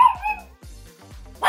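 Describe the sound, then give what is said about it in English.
Doug the Pug, a social media star, barks in a quick run of short, high yips, three or four sharp bursts, with no one talking. He is voicing Mitchell's family dog in a movie. “Besides being laugh-out-loud hilarious, the movie has tons of Easter eggs plus awesome voice acting, including social media star Doug the Pug, who lends his, barks? To the voice of Mitchell's family dog.”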